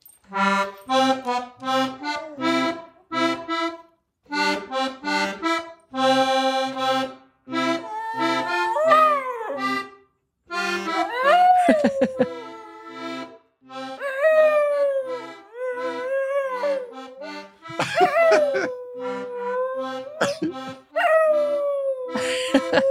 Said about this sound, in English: even just play one, like I'd love to hear the dog howling and you playing the accordion.